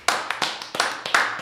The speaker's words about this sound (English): Okay. That was beautiful. Just a round of applause for those shows.